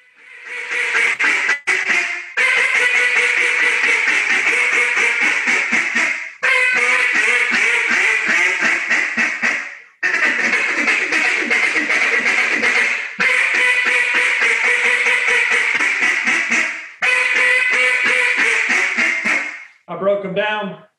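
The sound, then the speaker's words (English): Loud, rapid quacking from a loudmouth-model duck call, blown in long continuous bursts with brief pauses between, raspy and nasal, ending with a few quieter notes. “And I can get quiet on a loudmouth. I can still get. That's a loudmouth.”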